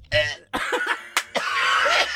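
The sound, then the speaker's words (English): A loud gagging retch after sniffing something foul-smelling, in several strained, breathy bursts with choked vocal sounds, over about two seconds, with no words spoken. “That was a vom moment.”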